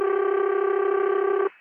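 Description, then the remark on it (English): A single steady, buzzy ringback tone over a long-distance telephone call as the phone rings at the far end, holding at an even level for about a second and a half before cutting off abruptly, leaving faint line hiss. “Now you hear the long distance sound come up, and in just a few seconds the phone is going to ring at the far end. There it goes.”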